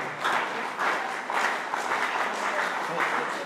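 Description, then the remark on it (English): An audience claps together in a steady, dense wash of overlapping handclaps, loud and continuous with slight rhythmic swells throughout, no single voice standing out. “These people, they are joining the clapping.”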